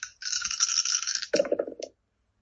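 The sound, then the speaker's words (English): Small dice clatter and rattle across a hard tabletop in a quick, bright tumble that shifts lower and thumps to a stop after about two seconds, loud; the roll comes up a triple minus. “Okay, I'm retiring these dice. That is the third triple minus.”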